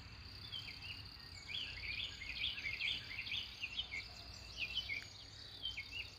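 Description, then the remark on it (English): Soft birdsong from several birds on a farm, quick high chirps and twitters tumbling over one another, with a low steady rumble of highway traffic nearby underneath and no one talking. “So even though I can hear some cars on the highway nearby, the birdsong has reminded me to be full of joy.”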